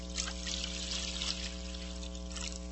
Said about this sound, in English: It is the moment where Jesus washes the disciples' feet. Where he takes water and he pours it into a basin.